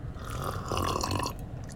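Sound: sipping water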